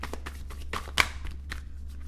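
Rapid, forceful shuffling of a card deck, a dense run of sharp papery riffles and snaps, with one louder slap near the middle and a steady low hum underneath.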